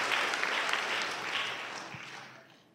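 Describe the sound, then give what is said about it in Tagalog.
An audience applauds, a dense wash of many hands clapping that holds steady before gradually fading out over a few seconds. “Nakasanya yung palakpak niyo.”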